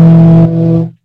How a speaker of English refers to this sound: So you guys are in your vehicle now, right? Yes, sir. Yes. And you have an air horn in that thing that you can blow right now? Yep.